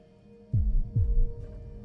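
A slow, deep heartbeat thumps twice in steady rhythm, muffled, over a faint low hum with no voices.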